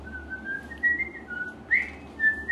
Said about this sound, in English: It's like a weird, He's whistling Pop Goes the Weasel.